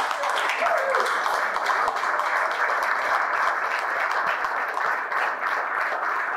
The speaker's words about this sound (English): Just sometimes, we just need to hear that round of applause.